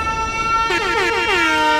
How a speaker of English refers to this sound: I'm gonna throw some more fucking air horns for you